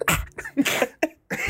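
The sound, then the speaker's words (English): Several sharp coughs into a tube come in quick bursts, separated by brief pauses, with no one talking. “Cough once. Let's see. Cough in this tube.”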